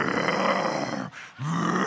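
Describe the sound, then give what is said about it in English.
A voice imitates the loud, rasping snoring of a man who snored through the night: a long rough snore, a brief pause for breath, then another harsh snore starting up. “He snored through the night. And he said, what did he snore like? Like a bear that was in hibernation.”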